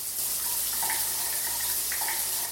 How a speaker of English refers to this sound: It's January, it's Monday, it's school holidays, it's 8:30 a.m. I'm in the shower shampooing off a hair rinse.